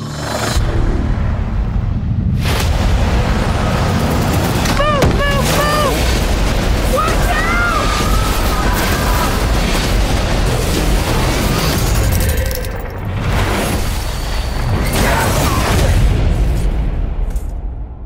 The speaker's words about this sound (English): That lightning, it hit those markers and it took us somewhere.